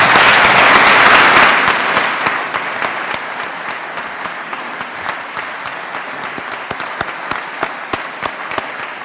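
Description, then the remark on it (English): An Indiana audience applauds itself and its statewide partners for a job well done, bursting into loud, dense applause that gradually thins out, tapering into scattered individual claps over several seconds. “A remarkable team effort, so please give yourselves and our statewide partners a big round of applause on a job well done.”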